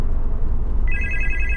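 The ringing tone of a phone call placed through Siri starts partway through, a bright high-pitched dual tone held continuously over a low rumbling background hum, with no one speaking.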